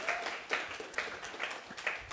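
An audience applauds to welcome a speaker, with dense, steady clapping, many overlapping hand claps forming a continuous crackling wash that swells slightly in places and holds at a moderate level throughout.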